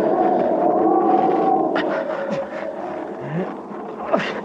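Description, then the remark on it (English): Steady roaring mountain wind at about the 17,000-foot mark, carrying fine, powdery snow, with a long, wavering howl that slowly slides downward in pitch and a few sharper whistling gusts rising and falling over the constant rush. No one speaks. “He was having a tough time breathing, and the wind had come up again.”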